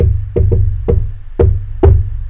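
Five sharp knocks tap against a car window on Knock Knock Road in an uneven rhythm, fairly loud, over a steady low rumble with no voices.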